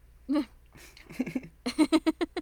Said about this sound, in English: Blown raspberries in Bowie's tummy.